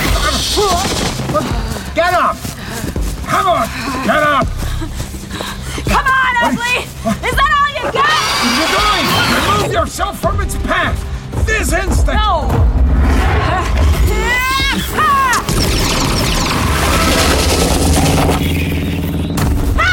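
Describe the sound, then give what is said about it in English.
Sharp gunshot blasts, fired at a monster through one of its many eyes into its brain, ring out amid a loud, chaotic action scene, with voices and rumbling noise running throughout. “Was to get a clean shot through one of its disturbingly numerous eyes. Bang! Straight into the brain.”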